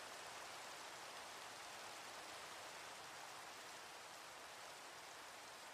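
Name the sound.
light rain falling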